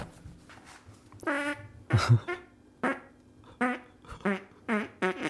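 A rapid string of loud farts right into a microphone: around seven short, buzzy, sputtering blasts separated by brief pauses, with no talking.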